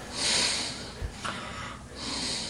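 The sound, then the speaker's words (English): A man with sleep apnea gives a loud, ragged gasp as his breathing restarts after stopping, a harsh snorting inhale with a brief low thud, then rough breaths trailing off. Fairly loud, with no talking. “He's still not breathing. Still not breathing. All right, you can breathe.”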